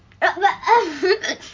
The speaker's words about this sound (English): I have the hiccups. Yeah, now my co-host has the hiccups.